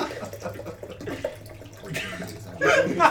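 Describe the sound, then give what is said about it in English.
Water gurgles as it is poured, a short bubbly burst near the end, after a stretch of low background murmur and faint voices. “Like, when I listen to this later, I want to hear the gurgling of my water being I poured.”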